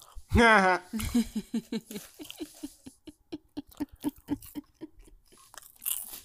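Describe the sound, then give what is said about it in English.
Steady, rapid crunching as someone eats popcorn, a long run of short crisp bites in quick rhythm, following a brief vocal sound at the start. “You seem happy with your popcorn over there.”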